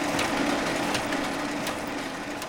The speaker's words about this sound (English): They do digitize some stuff, and some records get put on microfilm. A big stack of marriage licenses are being fed into a machine that takes an image and puts it on film.